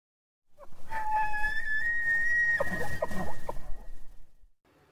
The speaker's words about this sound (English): That's so, like if I heard that noise and didn't know what elk were, what they sounded like, I would be terrified. I'd be like, this is haunted. It was so cool when we were camping in Yellowstone hearing them. Like it's a cool sound.